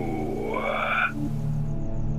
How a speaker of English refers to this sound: Just the sounds of crickets chirping and the occasional dull roar of a car driving down the street.